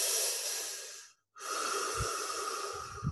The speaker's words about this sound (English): And through your mouth, down to the pit of your stomach, spine nice and erect, and just in and out, consciously, eyes closed, just breathing, focus on the breath in and out of your body.